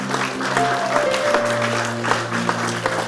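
A church audience claps together in a steady, dense patter, the applause lively, with low sustained keyboard-like tones humming underneath and no one speaking.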